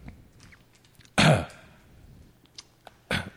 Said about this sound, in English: I'm just smelling this fucking mic. Jesus. Well, you've been burping on it.